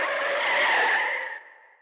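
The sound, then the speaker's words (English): Car brakes screech and tires skid in one loud, continuous burst lasting over a second, then the harsh squeal fades out quickly. No voices are heard. “Today's episode is about Fike hitting the brakes and taking a left turn.”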